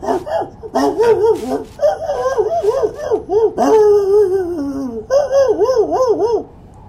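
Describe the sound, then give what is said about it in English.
A small dog barks and yips excitedly in quick, high-pitched bursts, some drawn into whiny wavering cries, loud, continuing almost nonstop for several seconds. “Hey, little dog dude!”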